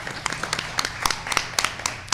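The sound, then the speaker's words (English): Light, uneven hand clapping, a dozen or so sharp claps over about two seconds, like a few people applauding briefly at moderate volume with no talking. “Oh, yeah, we can applaud that.”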